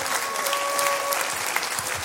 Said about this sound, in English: Come on, clap your hands and rejoice to that.